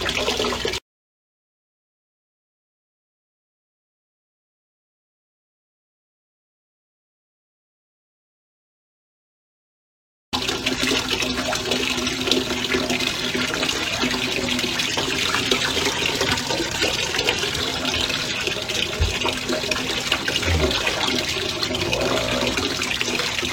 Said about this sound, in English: I'm not peeing. That's the bathtub I'm doing off the hot water stuff.